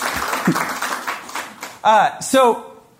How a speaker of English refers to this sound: Oh, thank you. I love the clapping. I don't know what to do with it.